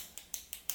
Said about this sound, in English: Stop clicking your damn pen, man.